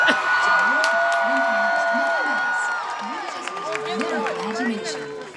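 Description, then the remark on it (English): An excited crowd cheers and applauds in a steady, dense roar as the Fantasmic show begins, with whoops and shouting voices rising above the clapping for several seconds. “And you let me know if you think the crowd was excited.”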